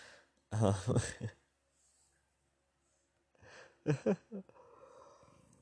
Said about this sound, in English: Oh, man, I'm yawning now. I'm not editing that out.